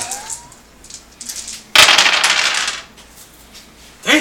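Dice clatter and tumble across a hard table in a loud burst lasting about a second, coming up six, preceded by faint light clicks and followed by a short rattle near the end. No one speaks.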